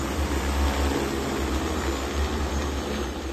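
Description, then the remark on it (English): An agricultural spraying drone's steady whirring buzz fills the whole stretch, loud overhead as it flies over heading wheat crops dispensing a mist of pesticides, with a deep droning hum beneath a broad rush of rotor noise and no voices. Jiaxing, Jiangsu province, China. “The wheat crops, heading and flowering already, quiver and waver in the force of the gust of wind created by the drone flying over, forming rolling waves of vibrant green in the fields.”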